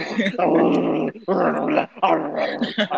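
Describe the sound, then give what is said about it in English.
A man growls like a dog in three loud, rough, drawn-out bursts, with brief pauses between them and no other talking. “He's just growling at her, bro, like a fucking lion.”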